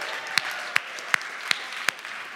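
An audience at a church applauds a pastor in a steady, dense wash of clapping, with a few sharp, louder claps standing out at an even rhythm.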